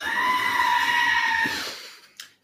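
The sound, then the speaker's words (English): A single drawn-out goat bleat played from a soundboard button, loud, with a strained wavering tone lasting about two seconds, then fading and ending in a brief sharp click. “That was supposed to be a goat button, but sure.”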